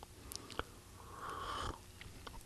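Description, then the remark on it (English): A quiet slurping sip of hot tea, a hissing intake of air lasting about half a second, framed by soft mouth clicks and a small swallow, with no talking, at about 8 o'clock on a Saturday night. “Stop for a gulp there. You'll probably hear me taking hot tea.”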